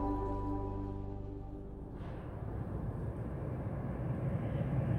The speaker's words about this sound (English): So I'm in Lower Manhattan next to some buildings known as Knickerbocker Village. You might hear the subway running up overhead there.